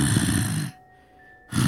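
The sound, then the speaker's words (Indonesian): A voice imitates a growl: two harsh, raspy, throaty bursts, loud and rumbling, separated by a short silent pause, with no words spoken. “Gitu-gitu, menggeram.”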